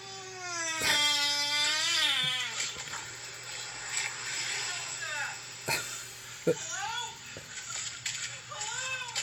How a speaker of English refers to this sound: He's so scared. What a fart. Yeah, he had that brewing.